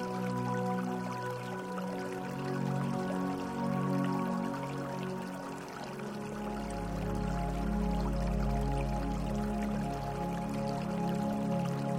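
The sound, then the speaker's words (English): Flowing river water runs steadily throughout, with soft dripping and trickling textures over a low, sustained drone-like tone; no one speaks. “Imagine yourself stepping in to the warm, inviting water, letting your feet sink into the soft riverbed.”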